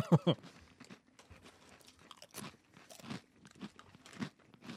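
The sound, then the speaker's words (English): Loud crunching on ruffled potato chips, sharp bites at the start followed by a steady run of chewing crunches, with no talking. “They're crunchy. They don't so much come off as lattice as like just ruffles.”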